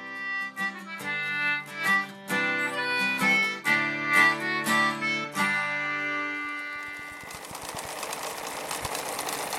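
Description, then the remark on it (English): A short melodic musical passage gives way to a sewing machine running, a steady mechanical whir with rapid rhythmic ticking that carries on to the end, for Singer Sewing Vac, a sewing machine and vacuum repair shop in Somerville. “Your one-stop shop for all your sewing machine and vacuum repair needs.”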